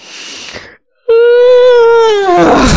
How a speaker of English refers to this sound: I like the yawn though. But that wasn't part of the voice. I'm just super tired.